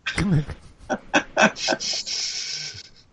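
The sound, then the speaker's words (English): A female dog makes soft, muffled whimpers and short snorting huffs, then a longer breathy exhale, vocalizing in her sleep. It's fairly quiet, with no one talking. “Oh, it's my dog. My dog like talks in her sleep.”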